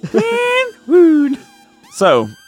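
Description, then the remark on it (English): Three short, loud siren-like wails, each sliding in pitch with a bright, buzzy tone and brief gaps between them, the dramatic Kill Bill alarm sound effect. “Do you have the Kill Bill alarm?”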